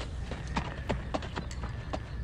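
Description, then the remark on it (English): The hooves of a horse named Thunder clip-clop in a steady, uneven rhythm, roughly eight sharp knocks over a couple of seconds against a constant low rumble of background noise. “The final horse for this year's hits team is Thunder.”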